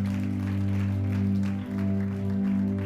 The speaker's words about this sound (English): If you accept that on your life right now, I wish you'd clap your hands and give a shout of praise. Come on, let's lift it up. Hallelujah.